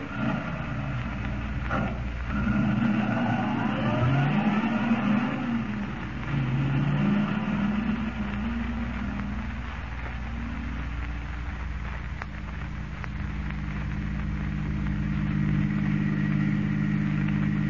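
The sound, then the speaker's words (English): A car engine drones steadily, its pitch climbing and dipping as it revs and drives along, with no voices over the continuous rumble. “The Phantom automobile is going to put in an appearance tonight.”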